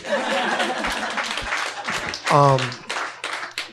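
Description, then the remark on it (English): An audience claps to praise a well-said point in a discussion, a steady, dense patter of sharp hand claps that runs the whole time, with voices and a brief sustained vocal shout rising over it midway. “I said clap”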